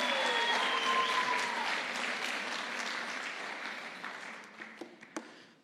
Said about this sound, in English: And as he does, won't you give him a round of applause and welcome?